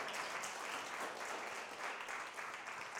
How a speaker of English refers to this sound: Come on, give Jesus one more clap offering tonight.